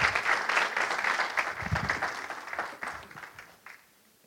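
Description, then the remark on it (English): An audience applauds, giving God a big hand clap: dense overlapping hand claps that stay steady and loud before gradually thinning and fading out over a few seconds. “Why don't you guys give God a big, big hand clap?”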